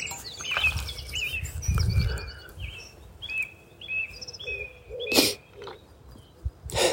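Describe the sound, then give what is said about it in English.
A bird chatters insistently, a rapid string of high, repeated chirps and whistles running through the whole stretch, with a sharp burst of noise and low rumbling underneath partway through. “That bird that's making a racket now.”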